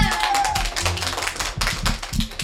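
A small group claps steadily in a dense, even patter that lasts the whole moment, fairly loud, after a correct answer, werewolf, in a spooky-sound quiz, with a faint high voice briefly rising over it at the start.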